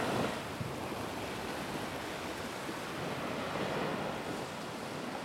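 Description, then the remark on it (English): Steady roar of surf breaking on a beach, a dense wash of crashing waves with some wind noise, continuous and fairly loud with no voices. “You know, looking out to sea now, there's nothing more spectacular, I think, than a wave crashing.”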